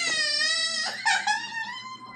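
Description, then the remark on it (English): A voice imitates a dying goblin's groans: a strained, high, wavering whimpering moan that sounds like crying, held for about two seconds with a brief catch midway. No words are spoken. “The goblin children are upset. The goblin is dying.”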